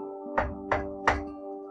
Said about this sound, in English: Later that day, a wolf came along and knocked on the door.